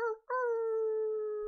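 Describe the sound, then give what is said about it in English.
A person imitates a wolf howl: a brief opening note, a quick break, then one long, steady, clear howl held loud for over a second, with no talking. “Finishing off with a wolf howl.”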